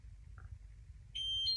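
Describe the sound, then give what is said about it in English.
A washing machine's door-shut signal, sounding as the door is closed after a cotton wash at about 40 degrees is set and the wheel is turned to the mobile start position: after a low background rumble, a loud, steady high-pitched electronic beep sounds and holds, shifting slightly in tone near the end. “That noise indicates that the door is shut and I can begin to use the app on my smartphone.”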